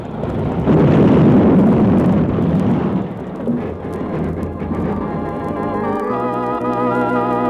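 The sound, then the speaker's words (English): A train collision as an engine plows into the back end of a work train: a heavy, rumbling crash swells up loud, then settles into a lingering roar as sustained, ringing tones rise over it. “There was nothing Cherokee or I could do to stop the engine, and when it plowed into the back end of the work train, it scattered men in a circle 200 yards wide.”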